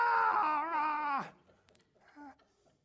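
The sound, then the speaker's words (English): A person imitates the roar of Leo the lion as he walks toward Daniel in the lion's den, with one loud, drawn-out voiced cry that slides down in pitch as it ends, then a short, quieter vocal sound after a pause. “And Leo the lion said, "Rah!"”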